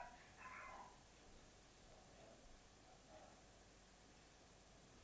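Dogs bark faintly outside: one short burst near the start, then a couple of softer barks, all over a steady background hiss with no talking.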